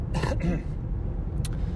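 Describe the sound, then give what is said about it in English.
A brief, rough throat clearing into the mic, two quick harsh bursts in the first half second, over a steady low rumble like a running car, followed by a faint short click. “Yep, another throat clear.”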